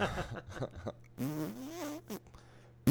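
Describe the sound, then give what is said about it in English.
A few quick percussive mouth clicks, made while beatboxing, lead into a long, buzzy fart noise blown with the lips, its pitch wobbling up and down before cutting off, fairly loud. “That sounded like a fart.”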